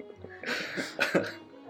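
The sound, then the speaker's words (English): A short burst of coughing and throat clearing, two or three rough, breathy hacks from a person who nearly choked on tea while sipping it, with no speech. “You nearly choked on the tea as you started the sentence, too.”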